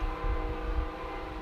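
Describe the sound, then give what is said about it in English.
A passing train gives off a loud, steady low rumble, with a faint droning hum riding above it and no break in the noise. No one speaks. “Train. Hey, train. It's loud. It comes like every single day.”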